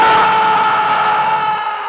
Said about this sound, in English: Dobbs leans down beside the driver's side of the car and reaches in to inspect the face of the charred corpse within, which lets out a sudden ragged scream, and the effect is phenomenal.